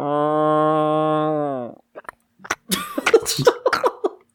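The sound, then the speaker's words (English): A person's voice imitates a cow with a long, steady, low moo lasting nearly two seconds, followed by a pause and a burst of coughing or laughter-like noises. “So, I'll, on top of this cow, that goes...”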